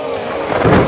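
thunder cracking

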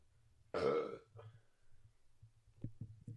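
loud burp

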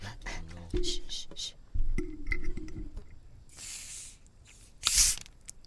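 soda can cracked open

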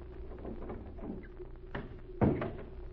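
door opening and closing

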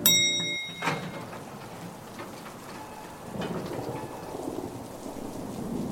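rain pattering against windows

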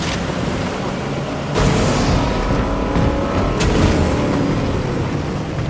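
boat engine running

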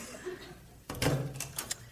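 back door opening

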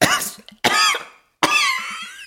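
man coughing

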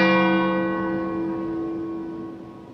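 bell striking twelve

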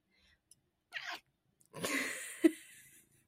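cat meowing near microphone

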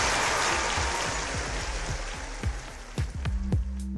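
applause

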